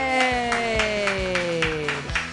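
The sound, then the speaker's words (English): An audience at a comedy show claps for a comedian in a steady, rhythmic beat, roughly two claps a second, with a sustained tone gliding slowly downward underneath the applause. “Clap your hands together for a J. Yay.”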